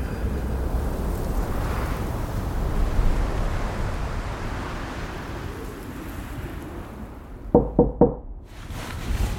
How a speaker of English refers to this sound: At the sound of knocking, Mick Garrett sits up and takes a moment to get his bearings.